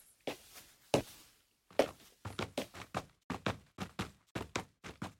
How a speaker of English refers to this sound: It's a little akin to like a sample library of a piano or a drum set or something like that. Except that instead of like drum hits or individual notes on a piano, it's all footsteps of various types of shoe on different surfaces.